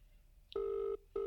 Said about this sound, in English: Phone's ringing. Phone.